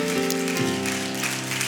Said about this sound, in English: In the name of Jesus Christ, why don't we clap our hands to the Lord and give him praise right now. Hallelujah.